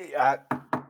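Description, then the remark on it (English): A voice trails off, then knuckles rap twice on wood, two quick, solid knocks about a quarter second apart. “so I'm hopeful, but knock on wood if you're with me.”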